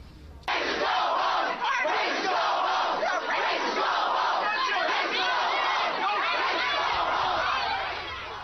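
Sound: protest crowd shouting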